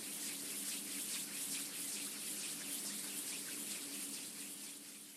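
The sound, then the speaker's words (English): Hands rubbing together make a steady, airy whooshing hiss that imitates the wind of a storm, continuous for several seconds with no pauses and easing off slightly at the end. No one speaks. “First, we'll make the sound of the wind by rubbing our hands together.”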